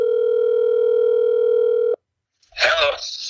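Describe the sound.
A steady, unbroken telephone dial tone hums for about two seconds, then cuts off abruptly; after a brief silence, a voice begins speaking over the line.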